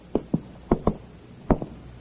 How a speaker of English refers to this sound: He walks down the hall to the door of apartment number 7. He knocks.